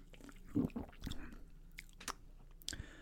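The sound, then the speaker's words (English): Someone sips and tastes a Lidl blackberry cucumber drink, with wet mouth noises, a swallow and a few sharp lip smacks spread over a few seconds. Nobody speaks. “That is the last sip I will try.”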